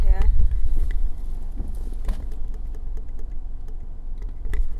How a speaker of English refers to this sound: I'm getting out of a parking lot right now.